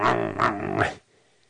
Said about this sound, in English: Start growling there.